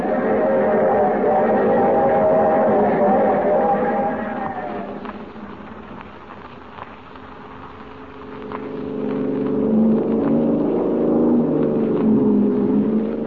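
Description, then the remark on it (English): A car engine roars loudly during a chase, its pitch shifting as it speeds along, easing off briefly in the middle before revving up again with a rising, straining whine. “Car up ahead. Faster”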